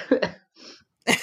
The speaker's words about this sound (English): it makes me cough, huh? I was like trying to clear my throat.